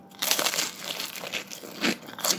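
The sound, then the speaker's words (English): A dense crunch of someone biting into a crispy breaded frozen garlic slice flecked with parsley, with a steady crackly texture and a couple of louder crunches toward the end, no talking. “So you have got that crunchiness around the outside, but as soon as you get into like that buttery centre, oh, it's brilliant.”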